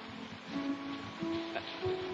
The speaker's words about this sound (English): Listen to that rain come down. Well, that's nice for the boys. There's nothing like a log cabin in the woods, a nice fire and rain coming down outside.